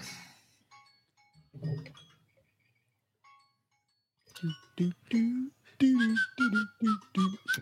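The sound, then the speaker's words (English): A timer alarm chimes a short series of high, thin electronic tones, fairly quiet, before people's voices and laughter come in over it. “I lost my timer. I can't shut it off.”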